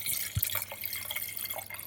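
Water trickles and splashes in a short, uneven stream, with a few soft drips and a low thump near the start, fairly quiet with no voices.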